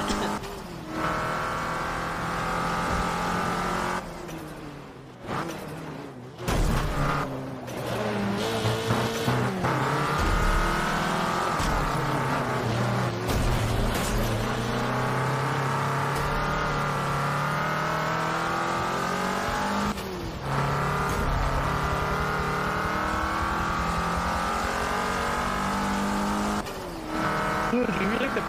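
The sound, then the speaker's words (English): A loud race car engine revs continuously for nearly thirty seconds, its pitch climbing and dropping through gear changes, with squealing tires cutting in over the harsh, droning roar. “Ugh, this car sounds nasty.”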